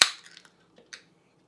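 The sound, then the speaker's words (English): A sharp pop of a beer being opened and poured into a glass, followed by a quick fizzy hiss and a couple of small clinks, then a brief second burst of foam as it settles; the beer is amber. “But let's go ahead and get this open. Get it into a glass.”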